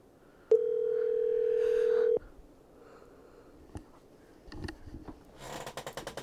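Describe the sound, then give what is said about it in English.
A phone's ringing tone while calling someone's number sounds once as a steady, fairly loud beep lasting under two seconds, followed by scattered clicks, handling noises and a final burst of crackly rustle. “I'm going to call his number.”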